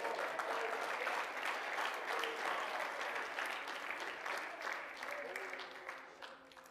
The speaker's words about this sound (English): Oh, let's clap our hands and praise Him this morning.